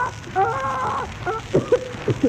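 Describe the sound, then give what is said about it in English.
A voice imitates a parrot squawking: a warbling, nasal cry followed by a few short, choppy squawks and chirps, fairly loud over a faint hiss. “Oh, Jack, look at that pretty parrot.”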